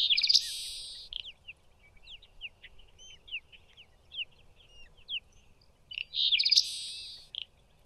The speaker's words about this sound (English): Also, here is what the seaside sparrow does sound like.